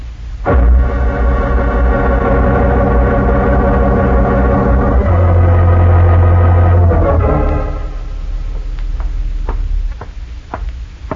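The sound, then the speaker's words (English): Heavy truck engines rumble loudly as trucks drive up, holding a deep, steady drone for several seconds before dying away, followed by a few sharp knocks and clunks. “Didn't I hear the trucks drive up?”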